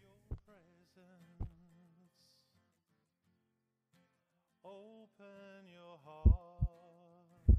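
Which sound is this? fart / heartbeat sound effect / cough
heartbeat sound effect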